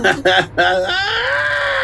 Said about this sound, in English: Terry laughed, but that suddenly turned into a feminine shriek.